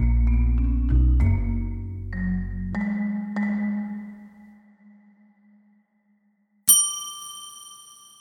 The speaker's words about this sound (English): Before we go on, can we talk about my bell for a second? I have this bell. I've been trying to figure out what to do with it. I'm hoping you can help me. My bell is a nice bell. It's a hotel desk bell, you know, like a brass dome